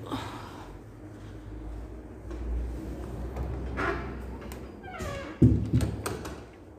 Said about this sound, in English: So then, let me just close this door.